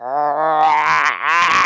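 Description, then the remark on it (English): A person lets out a loud, sustained growl, low and rough-edged, holding steady before briefly dipping and then surging back for a final push. No talking accompanies it. “If you need to growl to show your power.”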